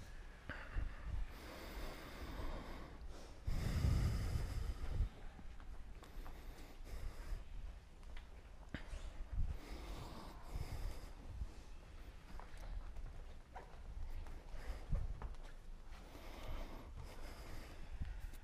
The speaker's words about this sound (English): You can assist it by pulling the air in a little more, adding some sound at the throat, both on the entry and exit of the breath.